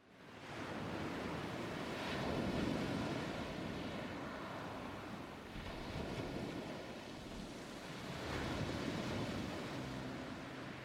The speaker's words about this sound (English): Gentle waves roll over the white sand of Mangrove Beach in West Thornvale.